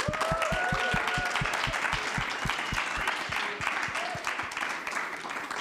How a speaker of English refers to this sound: I mean, they've put in a lot of effort. Give them a hand of applause.